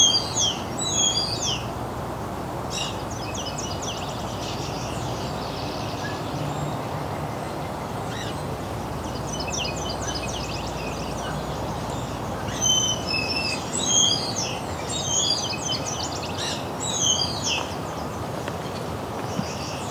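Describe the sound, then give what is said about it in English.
Several warblers, among them a yellow-rumped warbler, hidden in trees whose leaves have started to come out, sing high, trilling phrases in repeated bursts over a steady rustling hiss of outdoor ambience, with no voices. “All of these warblers are very well hidden right now, though.”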